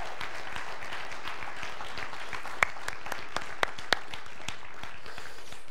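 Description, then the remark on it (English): A church audience at Westview Community Church applauds steadily, a dense wash of many hands clapping, with a few sharper, louder claps popping out near the middle before the sound starts to thin toward the end. “Can we give them one more big round of applause?”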